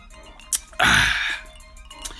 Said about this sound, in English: Give me one second. Let me sip some of my wine real quick.